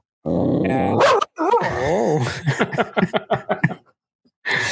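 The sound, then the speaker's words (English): A dog vocalizes loudly at another dog: a rough growl and wavering whine, then a rapid run of about seven short, sharp barks before falling quiet, with another brief bark-like burst at the end. “He barks at any She's dog like, he sees.”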